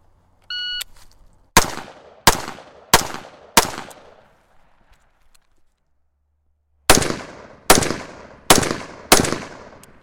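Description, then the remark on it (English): A shot timer beeps, then four sharp gunshots ring out in quick succession in a timed shooting drill with a 6-second goal time. After a pause of a few seconds, another volley of four shots follows at a similar steady pace. “So the way this is broken down, the way that I give it, I'll give you 2 seconds to engage two targets with two rounds each, 2 seconds to move to prone”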